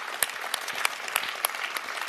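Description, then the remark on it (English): An audience claps steadily after a speech, a dense wash of handclaps with a few sharper, louder claps standing out at irregular moments, sustained throughout without any voices. “Big applause.”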